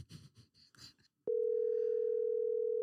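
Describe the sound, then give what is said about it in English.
A loud, steady electronic ringing tone comes over a phone line on an outgoing call, holding unbroken for over a second after a few brief muffled sounds. “I'm going to call people that I want to talk to.”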